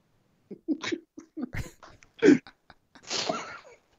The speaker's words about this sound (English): He's peeling oranges.